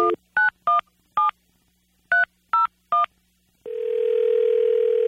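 Seven short, clear telephone keypad beeps are punched in an uneven rhythm with a brief pause midway as B95 radio hosts dial a call, followed by a steady, continuous phone tone that holds to the end. No one speaks.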